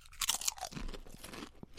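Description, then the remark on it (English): Crisp, crackly crunching of Stacks All-American Cheeseburger chips being bitten and chewed, a dense burst of bright snapping followed by softer, steady munching for a couple of seconds with no talking. “Chip cheers on the Stacks All-American Cheeseburger.”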